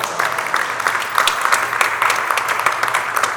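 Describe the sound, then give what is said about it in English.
A crowd claps steadily, many overlapping hand claps forming a dense, even patter that carries on throughout at moderate loudness. “And yes, you can clap at that.”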